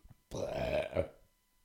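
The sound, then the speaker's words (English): A loud burp rumbles out in one long, throaty surge lasting about a second, swelling midway before trailing off into quiet. “When you belched there, right, a little smoke bubble came out that said erectiles function.”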